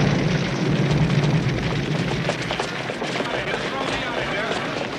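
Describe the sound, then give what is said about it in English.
A car that has just driven past explodes into a loud, sustained roar of noise that holds steady for several seconds, with sharp crackles and pops scattered through the rumbling blast. “That car that just passed us exploded.”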